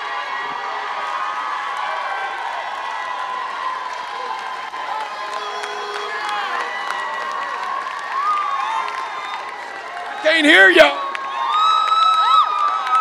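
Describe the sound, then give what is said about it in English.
A large audience cheers and shouts praise to God in a sustained, loud roar of many voices, with whoops rising out of the crowd; near the end a single voice calls out over the noise. “Now, amen, if you believe God's going to do it, I want you to release a praise for the next 20 seconds, and I want you to act like it's already done.”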